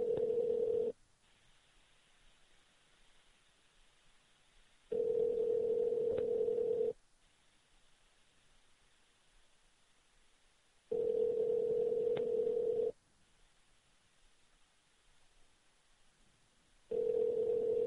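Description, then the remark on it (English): A phone line rings out on an outgoing prank call back to a man at a real phone number: a steady two-second ringback tone repeats four times with long silent gaps between, and nobody picks up. No one speaks. “Yeah, I'm going to call him back.”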